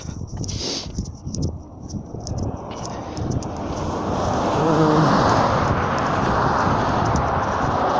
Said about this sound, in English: Oh shit, there's another slow ass helicopter. It doesn't look like a police helicopter.